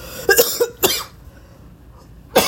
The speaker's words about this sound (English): I'm sorry. This is disgusting. I don't know who the fuck created the flu, but y'all motherfuckers created this and created an everlasting cough.